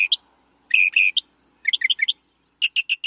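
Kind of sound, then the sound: bird, northern mockingbird singing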